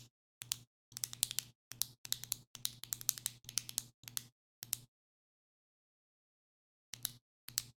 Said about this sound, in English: You're like, wow, did he just start clicking a pin? Yes, it's annoying, and I am proving a point. What are you trying to do by clicking a pin that much?